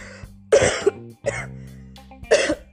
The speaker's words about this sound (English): I'm so sorry. I didn't know why I was coughing. Something was just, God.